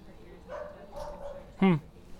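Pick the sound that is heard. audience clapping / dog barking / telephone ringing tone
dog barking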